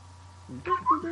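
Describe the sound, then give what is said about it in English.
A quick burst of whistled chirps and warbling beeps mimicking a small robot droid, rising and falling in pitch over about a second, moderately loud against a low steady hum. “That was good. I forgot you can whistle.”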